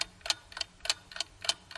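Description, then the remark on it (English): A wall clock ticks steadily, crisp light clicks coming about three times a second in an even tick-tock rhythm, fairly quiet, with nothing else audible. “as the Peshischa looked at the clock on the wall, it went from 3 o'clock to 4 o'clock to 5 o'clock”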